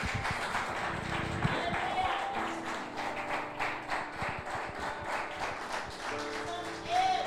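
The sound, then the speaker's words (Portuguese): A church audience applauds the Lord Jesus after a prayer during a service, a dense patter of many hands clapping at a moderate level throughout, with a few voices and shouts mixed into the clapping. “Aplauda o Senhor Jesus.”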